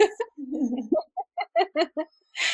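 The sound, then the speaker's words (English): Birds call: a low drawn-out note, then half a dozen short clucking calls in quick, uneven succession, fairly loud and clear, ending with a brief rush of noise. “and the birds agree.”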